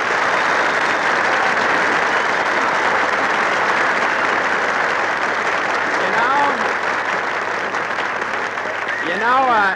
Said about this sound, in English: You say, well, if it isn't Jimmy Stewart, and everybody in the Brown Derby applauds.